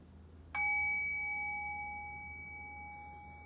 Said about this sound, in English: In the next breath, I'll ring the bell and we'll come back.